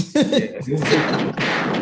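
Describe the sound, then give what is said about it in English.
A voice makes gunshot sound effects in tribute to basketball player Spreewell's passion: a short voiced lead-in followed by two rough, noisy bursts, loud and sustained rather than sharp, mimicking gunfire. “Gunshots for the Spree passion, man.”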